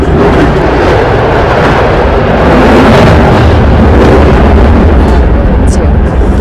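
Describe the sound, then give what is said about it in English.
An aircraft roars past in a loud, dense rush of engine noise with a heavy low rumble, swelling slightly midway and holding steady throughout with no speech. “So what do you, like, if you could only carry five things, and I'll give you time to think as she passes, what would be the five top items that you would pack?”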